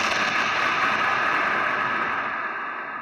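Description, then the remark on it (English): A loud explosion sound effect plays as a steady, roaring wall of noise that holds for about three seconds with a slight fade at the end. No one speaks. “It partly due to an explosion.”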